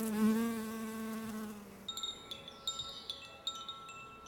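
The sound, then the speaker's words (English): A steady buzzing hum of bees inside a hive drones for about two seconds, then fades as brief high-pitched chirping tones flicker in short bursts over a quiet background. “It was a theremin. If I held my hand near it, it sang. As winter approached, I started to imagine crocheting a little hat for each bee.”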